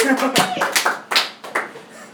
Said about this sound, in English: Hey! Applaud, you sons of bitches.